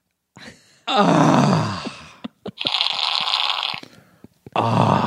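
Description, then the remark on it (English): A voice imitates passing gas in three long, buzzy bursts, the first rising into a strained groan, the second brighter and raspier, with short clicks and pauses between them. “Robert De Niro of fart acting.”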